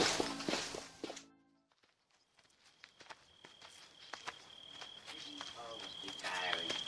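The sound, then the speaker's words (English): Footsteps walking at a steady pace as people are asked to walk along, a series of soft, distinct thuds. A thin, high-pitched tone hums faintly beneath them, and a brief burst of louder sound comes before the steps begin. “If you would be so good as to walk this way...”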